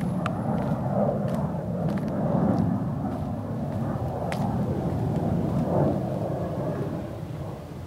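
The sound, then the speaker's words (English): A steady, deep rumble of an aeroplane passing overhead, heard from a backyard, fills the whole stretch, swelling slightly and holding loud throughout, with a few faint higher clicks scattered over it and no voices. “I can't believe how loud the traffic and neighbours and aeroplanes are when I listen back.”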